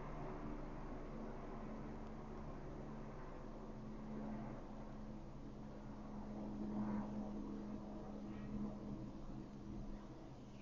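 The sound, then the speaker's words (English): A steady, droning rotor rumble from several helicopters flying over a building, a continuous low hum with a faint swell partway through, muffled, with no talking. “Why are there a bunch of fucking helicopters over my building?”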